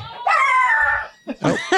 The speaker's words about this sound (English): Oh. That would be dog. My children.